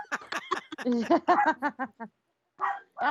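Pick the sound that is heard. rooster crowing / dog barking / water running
dog barking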